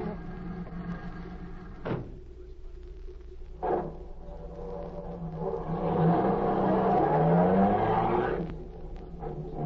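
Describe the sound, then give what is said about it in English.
A car engine idles steadily, two sharp thuds like doors shutting break in, then the engine revs up loudly and the car pulls away, its rising whine fading at the end. “I've got a car waiting.”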